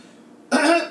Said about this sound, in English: Oh, hiccups.